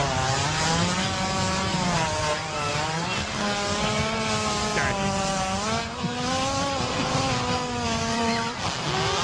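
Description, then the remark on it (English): A loud, sustained hippo fart with a rasping, engine-like buzz that rises and falls in pitch, much like a revving chainsaw, continuing steadily for about nine seconds with no one talking. “So we know it sounds like a chainsaw, but yeah, it's really a hippo.”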